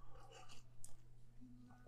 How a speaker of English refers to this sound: Have a sip of coffee first.